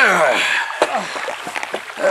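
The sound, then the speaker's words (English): A small rowboat pushes off into the water, with sloshing, splashes and a few sharp wooden knocks against the hull, while faint voices murmur in the background. “Ready here, Peter. Cast off.”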